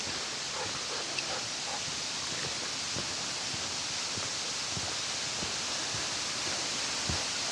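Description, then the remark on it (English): A steady, broad hiss of a waterfall rushes on without pause, with soft, irregular low thumps scattered through it, heard from a hiking trail. No one speaks. “It's not really clear from the map where they're supposed to be, but I hear water falling.”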